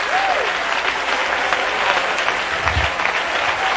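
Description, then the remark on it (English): A church audience applauds with a hand clap of praise to the Lord, sustained, dense clapping that stays steady and loud throughout, with faint voices mixed underneath. “If you are, give the Lord another hand clap of praise tonight.”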